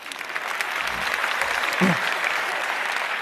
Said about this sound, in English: And I think there's one or two more Ig Nobel Prize winners in this room. Dan, where are you, Dan Ariely? Applause for Dan.